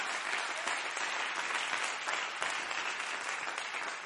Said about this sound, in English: Come on, clap your hands to the Lord and praise him right now.